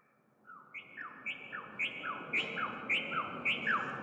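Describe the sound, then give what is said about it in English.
Recorded songs of birds once native to the area play from speakers in an art installation of suspended bird cages in an alley: a steady run of clear, downward-slurred whistles, about a dozen notes over a few seconds, with higher and lower phrases overlapping at a moderate, even level. “Then he added speakers, playing bird songs from the list of species Dr.”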